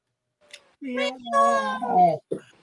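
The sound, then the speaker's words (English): A cat lets out a long, drawn-out meow with a rising then falling pitch, fairly loud, followed by a brief short chirp at the end. “Aww, cute kitty.”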